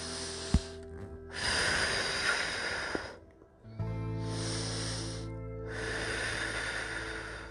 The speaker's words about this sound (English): Okay, let's do some breathing exercises.